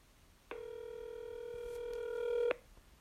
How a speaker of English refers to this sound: we're calling the man himself right now. We've got him on the line here. See if he picks up.